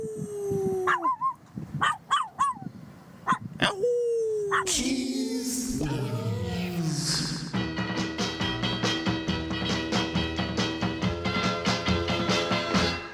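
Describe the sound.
A voice imitates a howl in a Halloween song, with several rising and falling wails over roughly four seconds, loud, before a busy band with steady rhythmic music kicks in.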